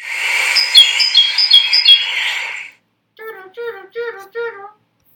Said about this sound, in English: Here's a great tit calling in Finland.